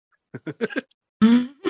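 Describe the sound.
A person imitates a cow, giving a drawn-out, nasal moo that starts abruptly and carries steady, then a second moo cuts in. A few short, choppy vocal bursts, like quick laughs, come first.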